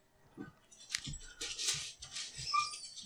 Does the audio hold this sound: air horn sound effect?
no